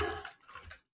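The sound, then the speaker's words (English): A short burst of typing on a computer keyboard while searching on Google: a few quick keystroke clicks in an uneven rhythm, fairly soft, then silence. “Oh, you're searching it right now on his keyboard.”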